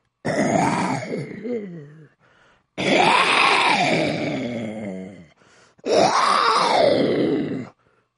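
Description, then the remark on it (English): A person imitates a lion's growl with three long, loud, rough roars, each rising and falling in pitch and separated by short pauses, with no other voices around. “Sounds like there's a lion.”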